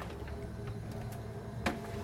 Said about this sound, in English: Yeah, I mean, it's picking up fridge noise, but not RF noise. So it definitely seems to be sorted.